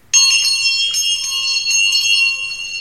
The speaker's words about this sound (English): They bury these people, and suddenly, not too long afterwards, they could hear bells chiming away. While some thought it was ghosts or spirits or wraiths, others were more quick-moving and started going to where the bells came from.